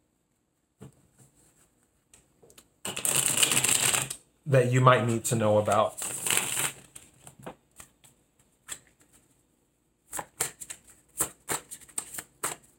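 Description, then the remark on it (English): A crisp riffle of a deck of tarot cards being shuffled, then a brief spoken phrase, followed by a scattering of light card snaps and taps. “Let me do a quick shuffle.”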